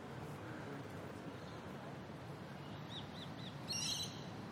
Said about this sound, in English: So, ooh, there's another bird.